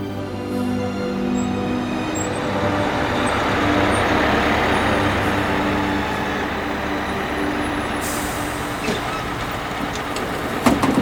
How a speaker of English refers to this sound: The 4th of December. The back exit of a double-decker bus.